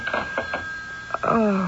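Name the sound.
telephone ringing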